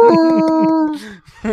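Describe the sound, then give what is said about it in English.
A person's voice imitates a dog's howl, a sustained wavering tone lasting under a second before trailing off, then a brief vocal restart at the end. Loud. “But man, the other day, it's like you're just on the toilet howling.”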